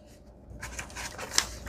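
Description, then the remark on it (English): Soft papery rustling and scraping that starts after a brief quiet moment, with one sharp snip near the end, as scissors cut around a sheet of paper to trim it off. The sound is faint and no one speaks. “Going around the world, cutting off the paper.”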